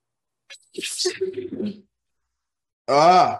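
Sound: sneeze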